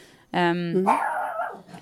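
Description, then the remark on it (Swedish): A dog named Goldie Blanken gives one loud bark that stretches into a drawn-out, whiny yelp before trailing off, heard alone against a quiet background. “Nu, alltså, nu är det min Goldie Blanken som låter.”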